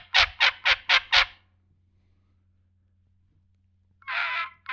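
A game call blown hard gives a goose-like honk: five quick, harsh, evenly spaced blasts, a pause, then one longer honk. Loud, with a low steady hum underneath.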